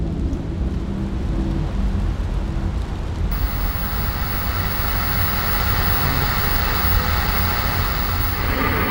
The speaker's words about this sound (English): The rain slashes across the windshield in torrents as you wind down a dark, tree-lined road somewhere